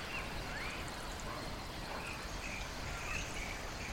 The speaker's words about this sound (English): You can hear the rustle and chirp of birds hidden in the underbrush as they settle in for the evening.